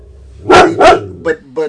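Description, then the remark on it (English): Household dogs coming into the room bark in a quick series of four sharp woofs, two loud broad barks followed by two shorter, higher yips. “Our dogs are coming in here.”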